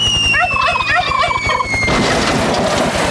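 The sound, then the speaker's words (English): A rapid, warbling gobble from turkeys, loud, rattling out in a quick burst before giving way to a broad rush of noise. “Simon says the turkeys are ready to fly.”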